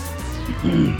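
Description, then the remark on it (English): A flagged-down taxi pulls up, its engine rumbling low and swelling for a moment with a brief tire squeal near the end, no voices. “Yeah, I'm gonna flag a taxi down.”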